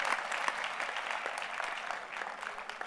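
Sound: audience clapping hands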